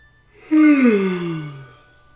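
A single long, fairly loud yawn, opening with a breathy rush and sliding down in pitch into a drawn-out groan before trailing off. No talking.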